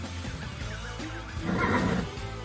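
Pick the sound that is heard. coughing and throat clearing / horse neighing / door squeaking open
horse neighing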